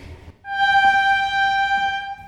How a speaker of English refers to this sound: And here I am. Look at me, traveling in a Pullman car on the Transcontinental Railroad.